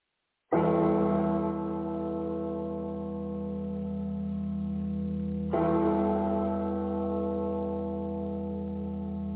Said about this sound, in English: And then, amidst the quiet, is a lonely sound of a bell.